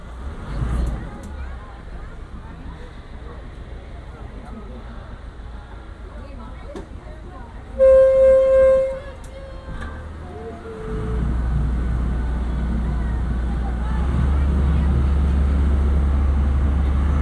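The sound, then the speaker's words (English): A brief tonal horn-like blast sounds, then a deep engine rumble swells and holds steady as a full passenger boat pulls away, with faint crowd murmur in the background. “This boat is full, folks. We're getting ready to take off.”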